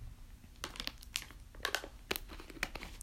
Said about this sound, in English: Let's just sip some water. Let's just try to see if water helps. Quit water break.